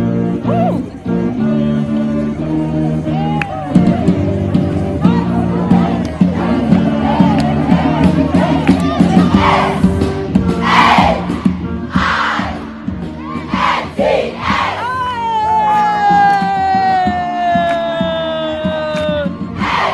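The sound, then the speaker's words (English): A large group of high school girls chants a school war cry in loud unison, rhythmic shouted phrases and rising yells, with a crowd roaring and cheering throughout and sharp whoops toward the end. “HIGH SCHOOL WAR CRY CHALLENGE”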